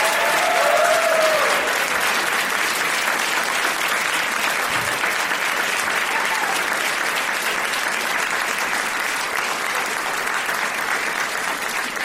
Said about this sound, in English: They're just going to keep clapping until you tell them to stop. I told them to do that. It's my own fault.